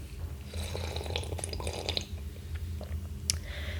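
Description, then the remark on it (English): Quiet, wet sipping and slurping of chaga tea, with small liquid clicks and mouth sounds scattered over a low steady hum, and a brief sharper slurp near the end. No one speaks. “Think I could start a fans only account with just me sipping chaga tea?”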